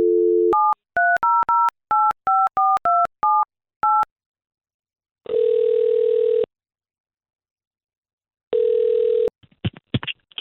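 telephone dialing and ringing

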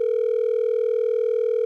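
telephone dialing and ringing

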